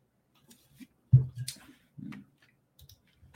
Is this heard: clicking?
yes